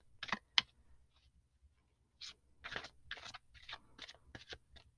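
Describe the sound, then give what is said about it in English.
A deck of cards being shuffled: two quick papery snaps, a brief pause, then a run of soft riffling and rustling bursts, all fairly quiet with no talking. “I think it's time that I start pulling some cards specifically for the podcast. So I'm going to shuffle.”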